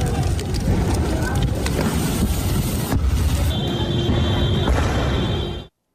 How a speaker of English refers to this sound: Explosions could be heard as police and protesters confronted each other.